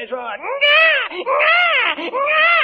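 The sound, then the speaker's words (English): A baby cries loudly in a series of high, wavering wails, each rising and falling in pitch, with brief catches of breath between them and no other sounds. “I think it's time to burp the baby.”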